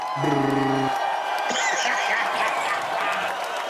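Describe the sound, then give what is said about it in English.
A steady wash of crowd cheering and applause runs loud throughout, with a brief tonal whoop or horn-like note at the start, a canned applause sound effect cued to welcome a guest. “Cue that motherfucking applause.”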